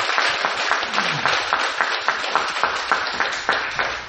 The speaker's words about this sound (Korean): 수고하신 모든 분들께 박수를 한번 보내드리겠습니다.